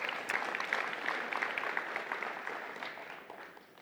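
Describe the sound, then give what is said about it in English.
An audience claps for Jesus during a sermon on Matthew, a steady, dense burst of applause that fills the whole clip, holding strong before easing slightly toward the end. “Matthew, yeah, give Jesus a hand.”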